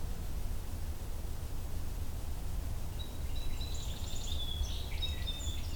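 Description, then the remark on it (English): A song sparrow sings a quick run of bright, repeated notes and trills in the second half, over a steady rushing background of wind-like noise. “It's a lot of repetition with the song sparrow right now.”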